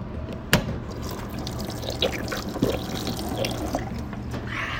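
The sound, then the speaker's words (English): A voice imitates a waterfall with a steady, breathy rushing hiss, broken by a few sharp splashy clicks. The sound is continuous for several seconds. “This is my impression of a waterfall.”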